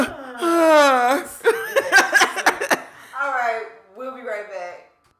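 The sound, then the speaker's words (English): A drawn-out, yawning groan with a sliding pitch, then a flurry of short breathy bursts and two more softer, wavering yawn-like moans. No words are spoken. “Oh, I'm hearing yawns.”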